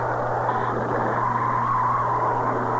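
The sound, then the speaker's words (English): A car engine roars loudly and steadily at full throttle, a dense, continuous drone whose pitch creeps slightly upward as it accelerates, with no voices over it. “Shell mileage experts will tell you that when you accelerate with a wide-open throttle, your car may be getting only 5 miles per gallon.”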